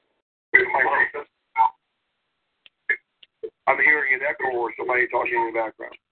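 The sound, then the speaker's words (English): A muffled, tinny voice plays back as if through a small speaker, short broken bursts followed by a longer stretch of garbled speech, like a delayed echo in the background; it is the speaker's own voice being heard back. “I'm hearing an echo or somebody talking in the background.”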